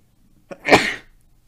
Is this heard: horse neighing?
no